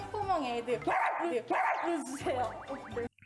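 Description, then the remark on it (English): A crowd of fans imitate dog barking, with overlapping yips and bow-wows in short loud bursts mixed with excited voices and squeals, ending abruptly. “I love it because this is like, you know, we barked so much in text, and now we're actually getting to see what Stay sounds like barking.”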